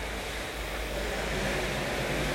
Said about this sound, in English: I think you can tell where I'm at right now. I'm currently out in the Pacific Ocean.